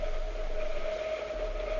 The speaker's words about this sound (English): Listen, there's a train coming now. You stay there, Watson, and watch how closely beneath the window the carriage roofs pass.